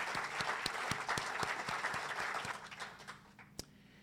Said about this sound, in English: So let's give them all a round of applause for putting this all together.